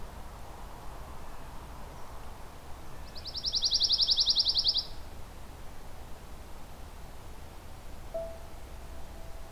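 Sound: ovenbird singing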